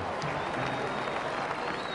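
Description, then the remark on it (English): A crowd applauding Garvey's address steadily, a dense wash of many hands clapping at an even loudness, with faint voices and a thin high whistle-like tone threading through. “The agent reported that Garvey's address was met with great applause and much excitement.”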